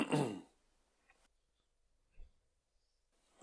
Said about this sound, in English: Yeah, I'll try and keep that coughing to a minimum.